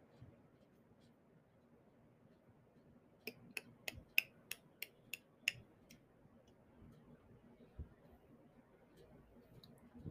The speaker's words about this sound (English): That clicking noise is something that I've always done since I was a child when I'm tired. It's super, super annoying and weird.